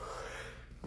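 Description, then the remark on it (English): A single short sneeze, with a sharp breathy intake and a quick nasal burst at the end, fairly faint and heard on its own without any talking. “Bless you.”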